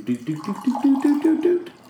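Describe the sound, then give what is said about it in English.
Barefoot Chardonnay wine pours steadily into a glass for a tasting, with the gurgling tone climbing in pitch as the glass fills over about two seconds. “But we're tasting wine. Okay, here we go. I'm pouring it up. Chardonnay.”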